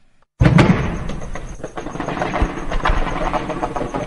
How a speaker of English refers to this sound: This is heavy gunfire exchange that occurred yesterday night between unknown gunmen and security forces in the southern neighborhood of Musaga